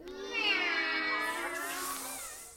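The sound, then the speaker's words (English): A person imitates a Halloween cat prowling in the night with a long, wavering meow, the pitch sliding and yowling for a couple of seconds before trailing off into a breathy hiss, fairly loud. “Make noises like Halloween cats prowling in the night.”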